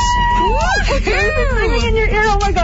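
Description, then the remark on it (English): Loud, high-pitched excited screaming from several voices at once after winning concert tickets on a prize wheel, sweeping up and down in pitch over a noisy crowd babble for a few seconds. “I think I started it by screaming in your ear, so that's okay.”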